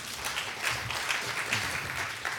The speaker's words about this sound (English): That was a nice shot. That's what it felt like, golf clap, right?